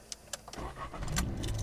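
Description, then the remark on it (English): A few sharp clicks, like keys turning in the ignition, then a car engine cranks and catches, settling into a steady low rumble. “All right, start the engine.”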